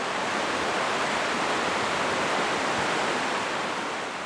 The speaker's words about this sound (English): Before long, I pull into the parking lot of one of my favorite Oregon beaches, Short Sand Beach in Oswald West State Park. Here we are. As I start the hike to shore, the highway noise fades into the sound of Short Sand Creek rushing toward the ocean.